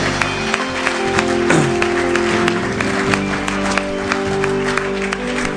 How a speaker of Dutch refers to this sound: Laten die mensen een warm applaus geven. Let's give them a hand.